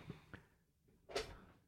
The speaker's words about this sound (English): Oh, I hate when I hit the button and the chair drops. Hold on. Let me fix my chair.